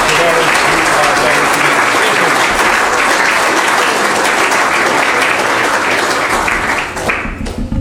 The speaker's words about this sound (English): So, ladies and gentlemen, you might like to give a round of applause at the beginning.